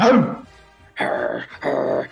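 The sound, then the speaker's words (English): A person imitates a dog's growl: three rough, guttural bursts, the first short and fading, then two longer, sustained ones, loud with brief pauses between. “Something like a growl and a bark. All right, do the bark. The growl be funny.”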